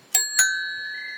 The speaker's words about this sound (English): She's a Dawes Duchess and she looks exactly as you'd expect. She has a basket, a bell that rings.